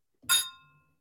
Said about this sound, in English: Yeah, so Voodoo Ranger and whatever you've got there, but let's cheers it up.